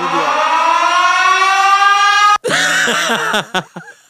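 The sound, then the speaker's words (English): A loud alarm siren effect: a long, steady, slowly rising wail, then an abrupt cutoff followed by wavering, warbling tones that stutter and fade out in short bursts. “I got the fucking alarm.”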